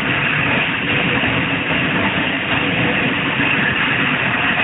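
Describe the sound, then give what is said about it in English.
Train engines labor steadily and loudly while climbing uphill, a dense, continuous low rumble and roar with constant heavy churning, no pauses and no voices. “You can hear the engines working hard.”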